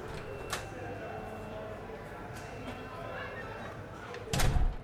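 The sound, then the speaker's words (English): A door opens with a short click and later swings shut with a heavier thud, set against a low, steady background hum of room noise. “Please go through the door.”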